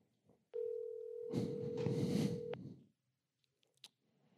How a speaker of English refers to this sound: All right. It's ringing. It's still ringing.